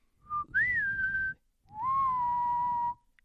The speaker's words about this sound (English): That means adios in whistle tone. Adios. Adios.